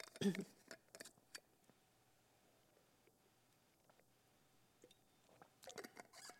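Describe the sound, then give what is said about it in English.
Quiet mouth sounds of someone sipping and swallowing water: a wet gulp at the start, a few soft clicks and swallows, then another cluster of sips near the end. “let me just drink a sip of water real quick.”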